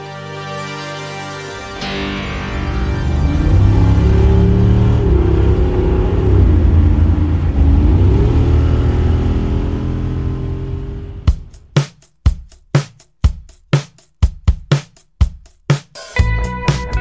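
A Jeep engine rumbles and revs loud for several seconds, pitch rising and falling, then gives way to a run of sharp, rhythmic percussive hits. No one speaks.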